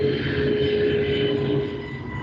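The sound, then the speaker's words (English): A loud, steady roar of an airplane passing overhead, a constant engine drone with a humming tone that fades slightly toward the end. No one speaks. “Do you mind if I use the bathroom while that plane goes by?”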